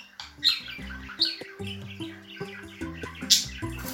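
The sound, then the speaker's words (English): Two budgies, one bright yellow and one greenish blue with a yellow head, chirp and chatter nonstop, with a steady stream of warbling calls broken by a few sharp, squawky peaks. The birds sound moderately loud, and no one speaks. “Really distinctive, very pretty little birds.”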